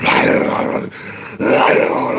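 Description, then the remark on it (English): A person imitates a low, rough animal growl with their voice, recreating growling heard to their left on waking up, two sustained guttural rumbles with a brief break between them, loud and without any other talking. “I hear this growling to my left. Like, I hear this.”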